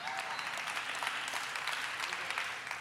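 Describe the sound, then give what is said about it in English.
About four people clap during a church sermon. The claps are quick and irregular, forming a thin, steady patter of applause with no one speaking over it. “You see only four people are clapping?”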